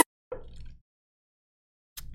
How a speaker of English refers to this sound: Actually, you know what? I need a sip of coffee. Sip it up. Sip it up.